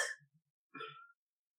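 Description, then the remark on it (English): A voice imitates a fart noise with two short, breathy blurts, the second a bit longer with a low buzzy rasp, fairly quiet, with no talking. “It literally made a sort of fart noise. It sort of went...”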